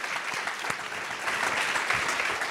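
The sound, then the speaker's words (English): Steady audience applause, a dense wash of many hands clapping at an even level throughout, with no voices breaking through. “Let's do some claps for Richard.”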